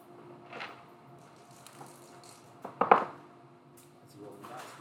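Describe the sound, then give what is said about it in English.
A short, loud burst of dice clicking and clacking together during a tabletop role-playing game, a quick cluster of sharp clicks about midway, over a low background hum with faint voices before and after. “I hear the sound of dice and I don't like it.”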